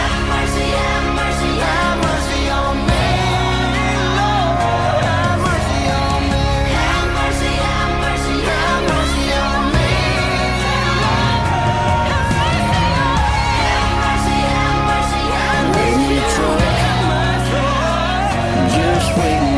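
A country song plays loudly and steadily on radio station KSUU Thunder 91.1, with male and female vocals singing over a full band throughout; the singing voices rise and fall in long held lines with no spoken talk.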